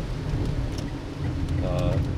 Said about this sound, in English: Oh, please, rain. Slow down. This is nice. Much better. Hopefully it won't get too crazy as soon as I get there.